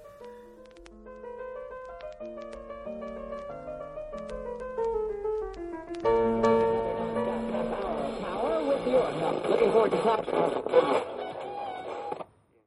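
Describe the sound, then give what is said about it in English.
Warbling electronic tones step through a melody, then a dense, crackling wash of radio interference swells over them, loud and garbled, before cutting off abruptly. “We appear to be experiencing some unexpected interference, and I have absolutely no idea where it is coming from.”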